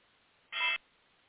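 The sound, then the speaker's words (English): A single short electronic beep from a phone being turned off, fairly loud and steady, sounding once against quiet background hiss with no talking. “I muted you accidentally. I had to turn my phone off.”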